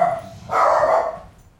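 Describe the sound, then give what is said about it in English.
A dog barks once, a fairly loud, slightly drawn-out bark preceded by a softer yelp, with no one talking. “There's a brother and some barking.”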